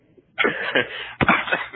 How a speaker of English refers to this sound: Yeah, and for those listening, I have a little bit of like that traveling cough. I got back from my honeymoon, and I'll try not to cough right into the microphone.